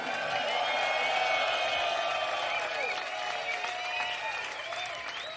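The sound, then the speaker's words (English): A concert crowd in Copenhagen applauds and cheers steadily for the keyboard player, dense clapping with whoops and high shouts rising over it, sustained and loud for several seconds without fading much. “Make some noise for Charlie Stacey on the keys.”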